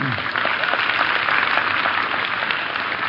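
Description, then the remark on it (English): An audience claps steadily, a dense, even wash of many hands with no breaks, holding at a constant moderate loudness from start to finish. “Don't applaud unless you're actually going to purchase this thing.”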